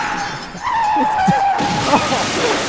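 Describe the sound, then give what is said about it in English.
A car's tires screech in a sustained, high-pitched skid for about a second, then a loud crash hits, followed by a noisy clatter of smashing and scattering debris. “Her car doesn't have a scratch on it.”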